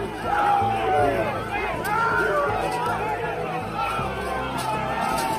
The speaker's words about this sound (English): As the crowd pushed the barricades over, the police were quickly overwhelmed.